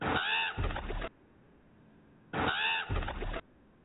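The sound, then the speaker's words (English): A crow sound effect: two loud, harsh, raspy caws, each broken into two quick parts, separated by a short quiet gap. No voices are heard. “Gotta love that crow sound, right?”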